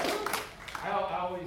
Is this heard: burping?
no